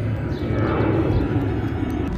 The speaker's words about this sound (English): Just like these travelers on the plane that is going overhead.